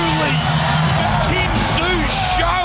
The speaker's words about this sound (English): It was so real in the crowd. Listen to them.